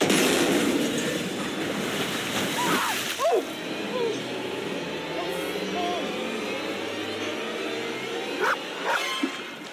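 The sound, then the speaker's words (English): Water churns and sloshes steadily as a crocodile comes from beneath a boat and flips it over, with a heavy splash surging up about a third of the way in and a couple of sharper splashes near the end, fairly loud. “And that's when the crocodile just comes from beneath the boat and flips over the boat.”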